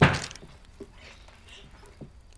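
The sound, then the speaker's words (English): A rocking chair is set down with one heavy, dull wooden thunk at the start, followed by a couple of faint, brief knocks as it settles. No one speaks. “Brought me a rocking chair.”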